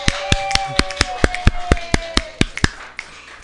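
Brief applause made of sharp, evenly spaced claps, about a dozen in quick rhythm, sounding like only a few people clapping, with a faint steady tone underneath and no talking, as an audience welcomes contestants being introduced in a singing competition.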